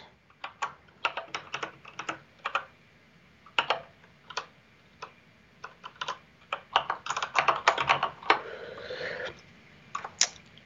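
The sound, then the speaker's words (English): Keys clatter on a computer keyboard in irregular bursts of quick taps as commands are entered in a terminal, with short pauses between flurries and a dense run of rapid keystrokes near the end, clear with no talking. “And because I'm not great at talking and typing, I'm just going to run this demo script, which is going to run commands and proceed when I hit buttons.”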